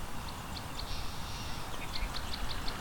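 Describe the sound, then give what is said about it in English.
Many song sparrows and American goldfinches sing, a scatter of short, high chirps and twittering phrases repeating over steady low outdoor rumble, with no voices. “Lots of song sparrows here too. And American goldfinch are singing as well.”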